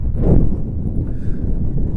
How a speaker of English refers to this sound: Oh, it's windy.